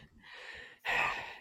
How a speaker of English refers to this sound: Who's breathing heavily? Is it? Sorry, painting my room.